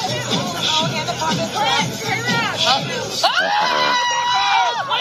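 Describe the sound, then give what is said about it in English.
Wedding guests shriek and shout over a dense babble of voices at a wedding where a dancing man's hand has caught fire, with high-pitched screams rising sharply partway through and continuing loudly to the end. “He lit it on fire. Now watch him. Everybody else is screaming.”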